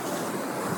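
Steady roar of ocean surf washing onto a beach, a broad continuous hiss with no distinct individual crashes, loud with no voices.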